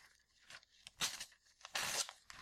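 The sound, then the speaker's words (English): A folded, creased newspaper sheet is torn in half in two rough, crackling bursts, the second longer and louder, with no talking. “And then I tear it.”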